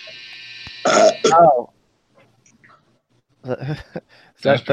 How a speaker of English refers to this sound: Was that the washer? That was a combo burp washer noise at the same time. Oh, that was our washer. It's our washer. Okay. Oh. It was a buzzer beater.